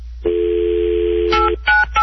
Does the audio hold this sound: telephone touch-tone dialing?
yes